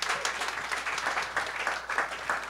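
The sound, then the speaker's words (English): An audience applauds steadily, a dense wash of many hands clapping at once, fairly loud and continuous from start to finish with no talking over it. “Round of applause one more time”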